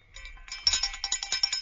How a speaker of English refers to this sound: Oh, that sounds more like a dinner bell.